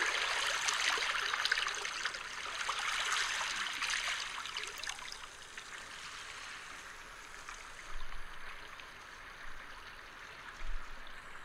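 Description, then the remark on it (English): Gentle waves wash over a small pebble beach with a steady, fizzing hiss of water running through stones. A fuller surge at the start eases into softer, continuous trickling, with no voices. “There's something to be said about the sounds of water, and that is the sounds of gentle waves rolling on a small pebble beach,”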